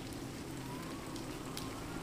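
Steady rain falls in a dense, even patter, with faint crackly drops and a soft low rumble of rolling thunder underneath, continuous and moderately quiet throughout.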